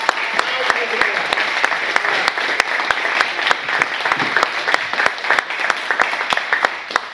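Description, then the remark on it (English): An audience applauds steadily for several seconds, a dense patter of overlapping claps at a constant, fairly loud level with a few sharper individual claps standing out. “All right, so now the claps for all of you.”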